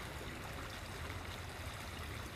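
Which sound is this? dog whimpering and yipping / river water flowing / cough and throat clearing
river water flowing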